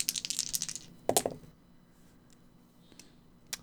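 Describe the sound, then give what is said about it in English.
Dice are rolled in a quick, clattering burst, then land with a sharp knock showing a 6 and tumble briefly, followed by a couple of faint ticks. Fairly quiet, with no voices. “That is 6 on the dice, and I add 0.”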